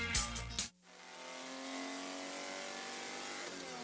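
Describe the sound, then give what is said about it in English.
A loud, brief burst of racing engines roars past, then fades into a steady drone of cars accelerating on a track, with rising engine harmonics and no voices. “Speaking of pretty cool sound effects, that one you just heard was, I think, one of the races at Monterey.”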